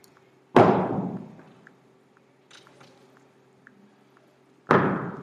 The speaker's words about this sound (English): Upon hearing the verdict of the judge, from the oldest to the youngest, you can hear the thud of the stones falling not on this woman, but all around him.